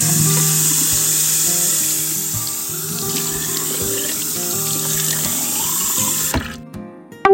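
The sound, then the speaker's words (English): Shower water runs in a steady, loud hiss for about six seconds, then shuts off abruptly, leaving a brief quiet with a faint knock at the end. “Would it be okay if I took a shower before telling any stories?”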